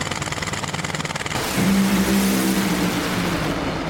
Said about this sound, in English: The Funny Car, I believe, on fire down there is Matt Hagen in dramatic fashion, 4.328 seconds, 215 miles an hour